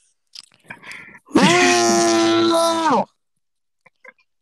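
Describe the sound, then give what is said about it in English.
A person loudly screams the word "mint" as a single drawn-out word for about a second and a half, strained, preceded by faint crunchy rustling and followed by a couple of soft clicks. “You're gonna fall asleep and wake up to hearing yourself screaming mint.”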